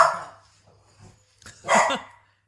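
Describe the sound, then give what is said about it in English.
A dog barks sharply twice at a delivery man, one bark right at the start and a louder, fuller one after a short quiet pause, with no talking. “Dog, come here. We have movie commentary to do. You're going to be fine. Nobody's going to be killed by the delivery man.”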